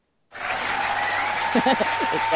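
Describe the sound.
Applause for someone's news of finishing their final cancer treatment bursts in after a brief moment of silence and holds steady as a dense, loud wash of clapping, with a few voices briefly audible underneath toward the end.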